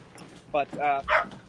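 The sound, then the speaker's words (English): A dog barks three times in quick succession, with a short sharp bark followed by two longer, fuller ones. The barks are moderately loud, with no talking over them. “He's really barking.”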